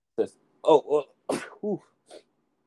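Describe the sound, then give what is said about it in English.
A single sharp, breathy sneeze bursts out between a few short voiced sounds and murmurs, with no clear words spoken. “Bless you.”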